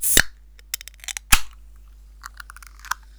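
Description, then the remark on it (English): Two strawberry soda cans cracked open, each a sharp, loud snap about a second apart, followed by light clicks and brief fizzy hisses. No talking. “That could be the best crack we've had.”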